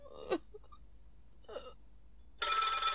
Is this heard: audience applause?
no